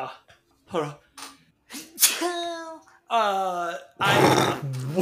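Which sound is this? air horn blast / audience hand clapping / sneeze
sneeze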